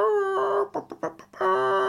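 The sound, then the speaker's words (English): A person's voice imitates a chicken, answering someone in chicken language, with a drawn-out squawk, a few short choppy clucks, then another long squawk. It is fairly loud, with no other sounds around it. “This is me answering you, Dad. In chicken language.”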